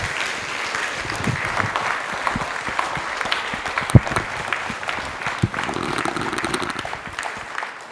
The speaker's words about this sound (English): A big applause to them and to the members of the troupe.